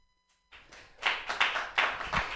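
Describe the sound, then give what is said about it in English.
An audience claps in a steady, rhythmic burst of sharp, bright hand slaps that begins after a brief silence and continues for about two seconds, with no voices over it. “Clap.”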